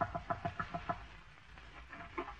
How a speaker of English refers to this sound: quit chasing those chickens.